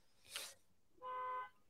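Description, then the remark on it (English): A car alarm gives a single steady honk lasting about half a second, a flat buzzy tone, preceded by a brief hissy burst of noise and short silence. “Setting off that car alarm to get us to stop shitting.”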